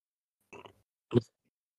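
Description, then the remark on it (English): A single sneeze in two quick parts: a softer, breathy lead-in followed by a louder, abrupt burst, heard alone with no talking around it. “And, you know, I had to sneeze real quick.”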